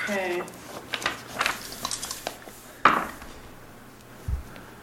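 Dice rolled for a wayfinding roll, coming up seven, clatter across a tabletop in a quick, irregular run of small hard clicks and taps, ending with a sharper knock, followed by a soft low thump.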